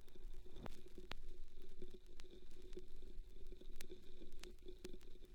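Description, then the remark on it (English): Soft vinyl crackle with scattered, irregular pops and clicks over a faint steady hiss and low hum, quiet, with no music or voices. “Yeah, the crackles.”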